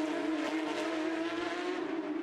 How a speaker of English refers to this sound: He's got a bit of company now, because within striking distance is the 53, the first of the two white and green Kelly Moss racing cars. That's Parker Dickinson, Riley Dickinson.